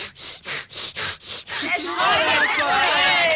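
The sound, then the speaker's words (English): A voice imitates a saw cutting wood with about six quick, breathy rasping strokes, then shifts into wavering whistle-like tones and a chugging rush suggesting a train starting up, fairly loud. “Or a man sawing wood while a train starts.”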